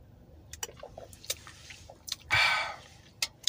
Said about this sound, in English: Let me take a sip of this Mountain Dew Amp real quick.